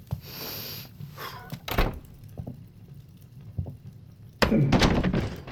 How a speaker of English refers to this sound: I opened the door and, it wasn't as bad as everyone says.